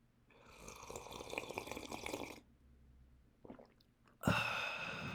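Two loud, airy slurps of someone sipping tea: a long drawn-in sip, a pause with a couple of small wet clicks, then another sharp, noisy slurp starting abruptly. No talking.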